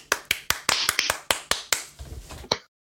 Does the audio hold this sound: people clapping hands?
yes